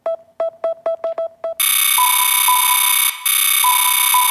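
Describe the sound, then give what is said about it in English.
A phone is dialed with a quick run of about eight short touch-tone beeps, followed by a loud, steady, buzzy ringing tone that continues with one brief break. “Then he walks over to his phone, picks it up, dials the number...”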